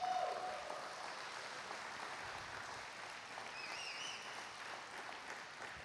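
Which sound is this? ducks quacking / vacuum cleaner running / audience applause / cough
audience applause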